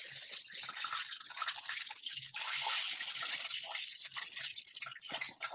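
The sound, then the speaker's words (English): Excess frying oil drips off a freshly fried piece of food into a hot pan after the burner is shut off, setting off a steady hiss of sizzling with scattered crackles and pops. No one speaks. “Let the excess drip off into the pan.”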